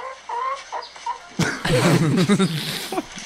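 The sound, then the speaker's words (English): A chicken kept in a bucket clucks in short, repeated bursts, starting softly and then growing louder and busier, with a hollow, slightly boxy tone. “You're supposed to keep chicken in a bucket.”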